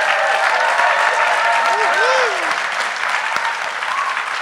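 Steady, loud audience applause fills the whole stretch, a dense wash of clapping with a few cheers and whoops rising briefly above it.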